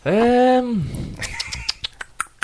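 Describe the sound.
A person imitates a woodpecker with a loud, nasal sustained cry that slides down in pitch, followed by a scattered run of sharp clicks and squeaky chirps.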